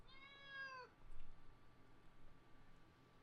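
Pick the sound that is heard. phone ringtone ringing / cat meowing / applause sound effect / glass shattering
cat meowing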